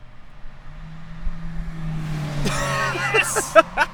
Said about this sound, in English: Here comes a truck.